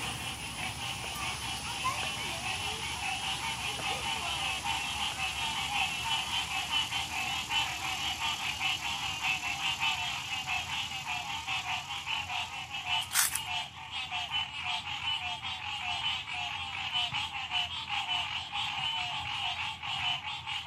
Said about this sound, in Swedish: Och då kom också ljudet från grodorna.